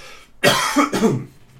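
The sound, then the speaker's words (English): A single loud cough bursts out with a harsh, rasping quality, followed by a shorter second hack trailing off into quiet room noise. “What, the cough?”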